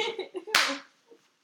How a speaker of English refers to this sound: And then you hear the sound of a body hit the floor.